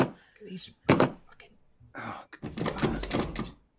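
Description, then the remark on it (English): A locked door is tried and rattled, giving a few dull thuds and clunks in quick succession, ending in a longer burst of knocking and jostling. “Out of this, the door. No, why? Oh, doesn't seem to be opening.”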